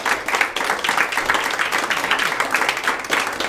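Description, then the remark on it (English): A large Pentecostal church audience claps hands in praise of the Lord, sustained, dense applause, a steady wash of overlapping claps with no pauses. “Give him a good praise. Give him a good hand clap.”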